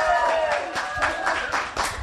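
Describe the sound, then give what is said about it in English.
An audience at the Power of Cycling event in support of the charity Wheels for Wellbeing claps steadily in a quick, uneven patter, with a few voices whooping and cheering over the applause; the response is moderate rather than roaring. “I expected a bit more of a cheer than that.”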